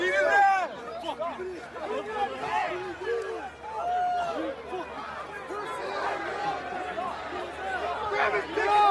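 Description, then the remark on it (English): A dense crowd watching a street fight shouts and yells over one another, a steady, agitated babble with individual cries rising out of the noise throughout. “The street fight sucks, but I want you to pay attention to one of the phrases said in the crowd watching this fight.”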